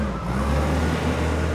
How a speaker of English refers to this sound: In a warehouse on Houston's industrial east side, forklifts move pallets of t-shirts onto tractor trailers, waiting to deliver them across the country.